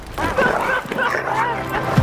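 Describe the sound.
A dog barks and yips in short, high-pitched bursts throughout, loud, with people talking over the noise.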